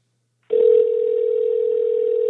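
A steady telephone dial tone as a phone call is placed starts abruptly after a half second of silence and holds at a constant pitch, loud, with no voices over it.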